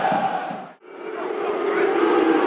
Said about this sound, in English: Watford fans booing